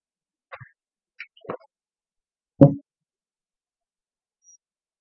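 Sipping and swallowing purified drinking water from a 1-gallon (3.78-liter) jug: a few small wet clicks and plops, then one louder, deeper gulp, followed by quiet. No one speaks.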